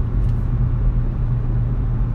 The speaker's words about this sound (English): You and your stupid little V8.